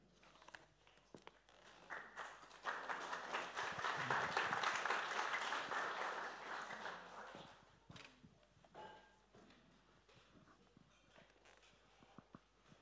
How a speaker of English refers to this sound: Slightly nervous clap there, wasn't it?